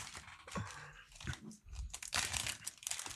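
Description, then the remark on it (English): Loud, crackly crunching of ridged prawn cocktail crisps being bitten and chewed, a steady run of sharp brittle bursts over about three seconds with no talking. “It's a big ridged crisp as well, that.”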